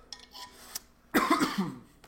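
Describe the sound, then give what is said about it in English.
A single rough, raspy cough after smoking bursts out after a stretch of near-silence with faint clicks, dragging briefly into a throaty rasp before fading. “When you cough, it just, like, hits you with, a little cheddar.”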